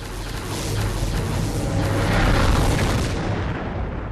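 A big cinematic CGI 3D explosion from a TV space battle: a loud, deep, sustained roar with a heavy low rumble that carries on for several seconds before its hiss begins to thin out. No voices.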